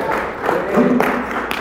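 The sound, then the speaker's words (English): An audience claps together in praise to God, a dense, steady wash of hand claps with a few sharper accents, joined by faint voices underneath. “You're clapping your hands because of victory.”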